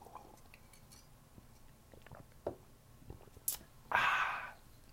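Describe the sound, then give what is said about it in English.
Faint scattered clinks of a mug, then a brief, breathy slurp as someone sips coffee, followed by quiet. No one speaks. “Hold on, let me take a sip of coffee before I tell you all this.”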